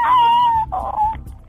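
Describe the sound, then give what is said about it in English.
A voice imitates hysterical screaming: a long, high, wavering wail followed by a shorter second cry, loud and alone with no talking. “And you'll have to chase me with your big chainsaw for 20 minutes round my garden as I stumble over branches and scream hysterically like this.”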